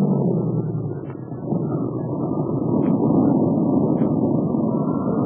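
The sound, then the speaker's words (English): A steady, low engine drone rumbles on without pause, thick, like a propeller plane in flight, with a few faint higher blips breaking through now and then. “I'm going to land before that pilot makes crap up on this plane of mine.”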